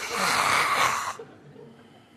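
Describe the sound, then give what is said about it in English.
A person imitates a snore underneath a blanket: one breathy, rasping inhale lasting about a second, fairly loud, then trailing off into quiet. “And then I just start snoring underneath the blanket.”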